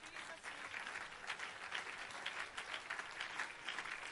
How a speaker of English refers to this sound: Won't you clap your hands unto the Lord?